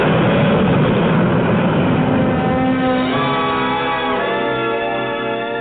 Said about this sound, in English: You're in one of Eastern's whisper jets. The noisiest section is the pilot's compartment. Yep. We keep the door closed. Flaps coming by. Cabin, it's quiet. The jets and the noise are behind you.